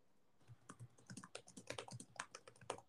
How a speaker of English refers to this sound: Well, then why do I hear the clickety-clackety of your keyboard?